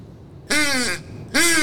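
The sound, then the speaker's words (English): Two loud, raspy quacks blown on a duck call, each a short buzzy honk that dips in pitch, separated by a brief pause; the second is cut off at the end. “You're such a good duck caller.”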